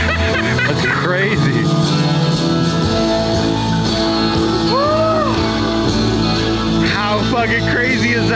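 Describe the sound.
A crowd erupts in loud shouts, yells and rising whoops over steady live music as a giant bolt of lightning strikes the stage, the excited voices swelling throughout and peaking in sharp cheers near the end.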